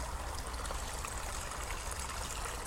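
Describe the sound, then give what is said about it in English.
A small stream running beside a path babbles and splashes steadily over little falls, a continuous trickle of bubbling water with bright tinkling detail and no voices. “Tinkling little falls of water, just bubbling away.”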